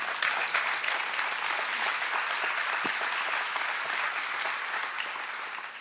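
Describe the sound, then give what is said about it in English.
A crowd applauds steadily for about six seconds after the speaker invites them to clap, a dense wash of many hands clapping at an even loudness that thins only slightly at the end. No one speaks. “Yeah, you guys can clap on that one.”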